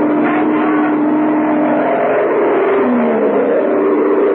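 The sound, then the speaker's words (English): An airplane engine roars loudly and steadily for several seconds as the pilot takes the plane back into the sky after a failed landing approach, heading for Wiesbaden; a dense droning rumble with a low tone that bends slightly in pitch toward the end; no one speaks. “Why, the pilot took his plane back into the sky after the approach failed.”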